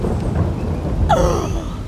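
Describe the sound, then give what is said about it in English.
A deep, continuous rumble of thunder from the lightning storm Relampago del Catatumbo, the everlasting storm, rolls underneath. A sudden sharp crack bursts in about halfway through and trails off with a descending whine. It is loud, with no talking. The storm rages for almost 260 nights of the year. “That, Mindy, is Relampago del Catatumbo, or in English, the everlasting storm.”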